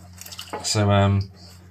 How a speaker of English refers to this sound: I'm currently washing cutlery, which is a bit of a pain as well. Washing in general is just a pain in the arse, really.